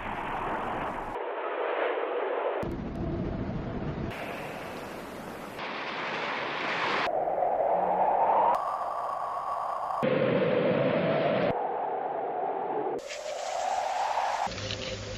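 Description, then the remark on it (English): A montage of howling wind excerpts from Fellini film soundtracks (The White Sheik, I Vitelloni, La Strada, Knights of Cabiria, La Dolce Vita, 8 and a Half, Juliet of the Spirits, Satyricon, Roma, Amarcord, Casanova), cut abruptly every second or so, each with a different hissing texture and a rising and falling whistling tone, steady and fairly loud, no voices. “In fact, I have lifted all those winds from The White Sheik, I Vitelloni, La Strada, Knights of Cabiria, La Dolce Vita, 8 and a Half, Juliet of the Spirits, Satyricon, Roma, Amarcord, and Casanova.”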